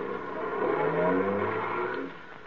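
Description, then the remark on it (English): A taxi's engine revs up and accelerates, its rising drone loud for about two seconds before easing off slightly at the end. No voices. “Hey, taxi.”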